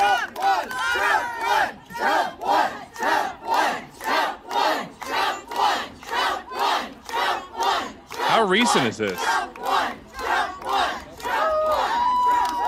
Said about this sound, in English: Those kids don't know what the fuck they're yelling. That's bad. No kids know what they're yelling.